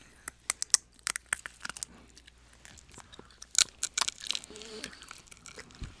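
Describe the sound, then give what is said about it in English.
Crunching of a crisp pumpkin seed snack being chewed, with sharp irregular cracks and crackles over several seconds, loud with no talking. “Oh, that's a pumpkin seed.”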